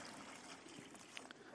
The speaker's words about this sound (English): So I'm going to pour this water in here.